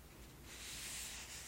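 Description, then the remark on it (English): A soft, continuous scratching of a pencil on a paper pad while writing down fall recipe ideas, quiet, rising after a brief pause and lasting about a second with no voices. “I have a pencil and paper pad here so we can write down any ideas we like.”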